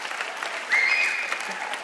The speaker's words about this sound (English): Clap your hands. They say y'all don't clap your hands over here at Orange Wood.